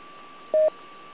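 A single short DTMF touch-tone dialing beep on a radio autopatch cuts through a steady hiss of band-limited radio static, loud and clear for a fraction of a second before the hiss continues alone.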